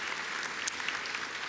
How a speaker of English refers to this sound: How about a round of applause for our creative team putting all this stuff together? And I think they've done great.